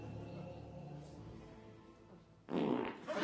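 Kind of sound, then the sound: human body sound, fart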